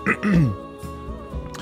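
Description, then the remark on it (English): A man clears his throat into a microphone with a couple of rough, guttural rasps in quick succession, followed by quieter breathy vocal noises trailing off. “I can't get on this goddamn microphone and not clear my throat.”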